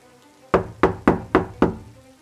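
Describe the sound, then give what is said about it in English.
Five loud, solid knocks on a wooden door in a quick, evenly spaced rhythm, with no voices and only quiet room tone around them. “George was jolted from his drowsy state by a loud knock at the door.”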